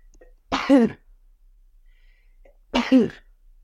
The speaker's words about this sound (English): I have to sneeze.